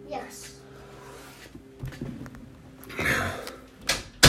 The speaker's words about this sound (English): Okay, will you close the door?